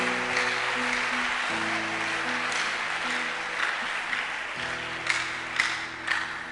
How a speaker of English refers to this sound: Oh, are you clapping this morning?